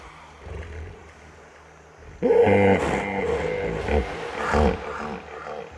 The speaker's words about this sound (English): This is a piece entitled …. And it's on …'s stunning album for Touch called …